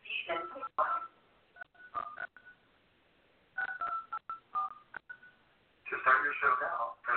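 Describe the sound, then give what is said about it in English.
Several short telephone keypad tones beep in an uneven sequence as digits of a PIN are pressed, clear, with bursts of garbled, phone-quality voice sound from an automated prompt before and after them. “I'm sorry, but I did not hear you press at least 4 digits of your PIN number.”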